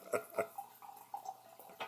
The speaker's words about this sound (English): Libations. Yeah, that's liquor being poured, dude.